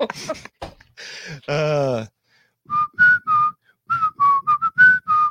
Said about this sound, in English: Same whistle? Yeah. Okay. Oh, dang. I know, right? Tweety Bird, is that you?